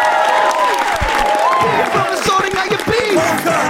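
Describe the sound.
A crowd gives a guest a huge round of applause with cheering. Dense clapping is mixed with whoops and raised voices, holding at a loud, even level throughout.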